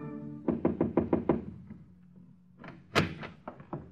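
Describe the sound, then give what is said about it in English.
A quick series of about six firm knocks on the wooden door of a hotel suite in a Midtown hotel, a brief pause, then another burst of louder knocks, clear with no voices. “and one afternoon she moseyed up there and knocked on his door.”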